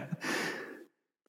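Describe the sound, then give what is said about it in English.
A single loud, breathy cough bursts out from a person being interviewed and trails off into a rasping exhale, followed by silence. “Of course, now suddenly I have to cough when I'm doing an interview.”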